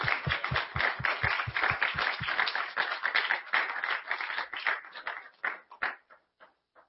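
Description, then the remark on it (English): A church audience applauds two people for their service to the district, with dense, steady clapping that thins out toward the end, trailing off into a few scattered claps before falling silent. “Can we applaud them for that?”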